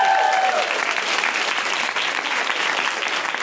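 An audience breaks into steady, loud applause for an audience member invited to come up, a dense wash of many hands clapping at once that holds evenly throughout, with a brief whistle-like tone cutting through at the very start.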